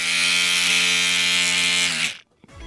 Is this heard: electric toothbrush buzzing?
yes